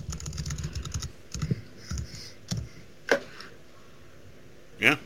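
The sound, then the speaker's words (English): Rapid clicking of keys on a computer keyboard as a woman looks something up online, a quick burst of keystrokes followed by a few scattered, sharper taps, moderately loud with no talking. “You can hear her typing,”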